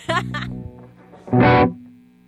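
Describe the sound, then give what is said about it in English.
Electric guitar being tuned through effects: a couple of plucked, sustained notes, a brief lull, then a louder fuzzy, distorted burst that cuts off and fades away. “So I blame Greg and his perfectionist tuning.”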